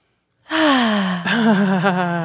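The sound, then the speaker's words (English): A deep, drawn-out breath let out with voice, like a loud groaning sigh lasting nearly two seconds, wavering slightly toward the end, with no talking. “Just breathing.”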